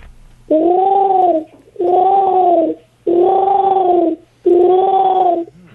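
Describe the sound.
A voice imitating a pigeon, four loud, drawn-out cooing calls in a steady rhythm, each a wavering low-pitched hum lasting about a second with short pauses between.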